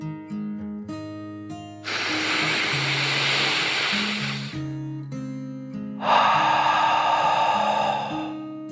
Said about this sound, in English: Smiling gently, the little elephant took another deep dragon breath in and out.